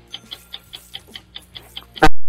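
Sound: ticking game clock countdown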